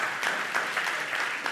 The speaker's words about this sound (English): Hold your applause for just a moment.